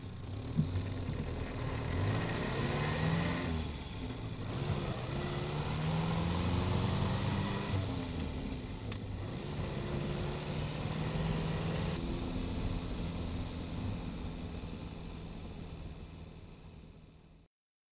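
A car drives steadily for about eighteen seconds, its engine rising and falling in pitch as it accelerates through gears, with constant road rumble and no voices.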